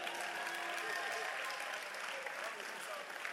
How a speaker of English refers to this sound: Clap for the sound controllers.